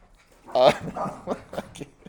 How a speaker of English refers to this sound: I have three dogs chasing each other through my entire house.